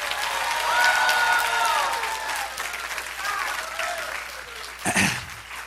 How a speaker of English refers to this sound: But once again, let's give him a big round of applause and tell him how proud we are.